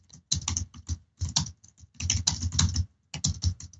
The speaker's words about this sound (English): I'm starting typing louder, haven't I? I like it. It's back to the old days.